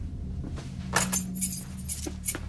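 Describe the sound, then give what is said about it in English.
Car keys jangle in a few short, bright metallic bursts as they are handed over, fairly quiet over a low background hum, with no one speaking. “you got her car keys? Yeah. Give me them.”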